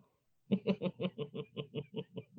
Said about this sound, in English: as I'm saying this, I hear my kids screaming. I don't know what that means.